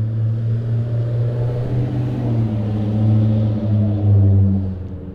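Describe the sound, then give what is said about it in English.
A truck rumbles past, its deep, steady engine drone swelling louder toward the middle and end before easing slightly. No one speaks. “Well, that was a lovely sound of a truck.”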